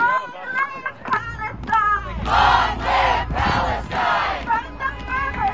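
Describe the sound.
A street protest crowd in New York chants loudly in rhythmic bursts, many voices shouting together in repeated surges over a steady low rumble of jammed-up traffic.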